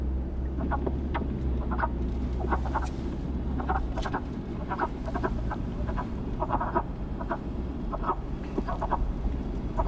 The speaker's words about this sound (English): Its hoarse, low-pitched croaking can be heard from temporary or permanent woodland pools, roadside ditches, or wetlands adjacent to woodland areas